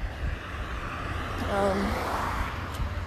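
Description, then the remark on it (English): Steady outdoor street traffic rumble heard while someone crosses a street, with a car's engine noise swelling louder as it passes by midway, then easing back into the general street hum. “Okay, why are there so many cars popping up? I'm crossing the street.”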